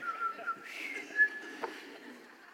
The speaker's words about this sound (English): How ridiculous is that song? It was like Jiminy Cricket in the room or something. What were we whistling for at the end?